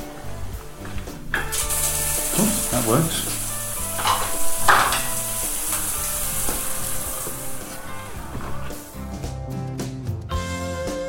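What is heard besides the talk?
shower running water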